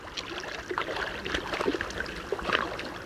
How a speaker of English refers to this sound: On a cool July morning, three moose frolic in the waters of a Wasatch Mountain lake in Utah. Here a large female urges her two young moose to follow her lead, and they slowly emerge from the water.